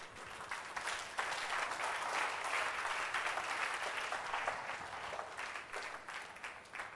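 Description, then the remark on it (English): A crowd of people claps steadily for several seconds, a dense, sustained burst of applause that holds fairly even in loudness before tapering slightly at the end. “I didn't ask you to clap, so if you're going to clap, clap properly.”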